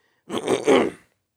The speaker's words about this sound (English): I'm sorry, I'm a little sick today. So if if I'm clearing my throat a little, you know, we're all actually.